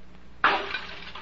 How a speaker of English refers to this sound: Did that help, smashing the glass?